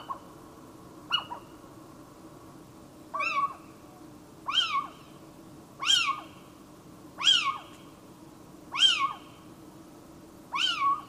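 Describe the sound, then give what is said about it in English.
A little owl gives a series of shrill, mewing calls, about seven in all, repeated at a steady pace over a low, constant background rumble. “The little owl is a vocal species and can make over 20 different vocalisations, including their shrill and repetitive gurek, gurek, and cue, cue sounding calls.”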